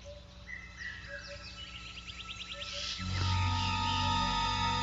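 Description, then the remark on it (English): A vervet monkey's eagle alarm call warning of danger from the air, sharp chirping and chattering calls in rapid bursts against a wild outdoor background, then a fuller, steadier sustained tone swells in and grows louder. “A call that means danger from the air.”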